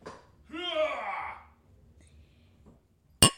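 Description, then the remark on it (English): A drawn-out sighing vocal sound fades into quiet, then a single sharp clink of two drinking glasses, not made of real glass and holding a bourbon and lemon juice drink, knocked together in a toast in front of the microphone, rings out loudly at the very end. “Just pass me your glass. I'll clink in front of the mic.”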